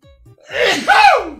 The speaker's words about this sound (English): I'm going to sneeze. Hold on. Here comes a sneeze. It's a big one. I can feel it.